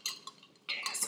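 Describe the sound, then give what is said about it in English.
Ice cubes rattle against a wine glass full of ice as someone drinks wine, in bright, glassy clinks: a few separate taps at first, then a denser, louder jangle of clinking toward the end. No voices. “Just my ice cubes rattling the whole time.”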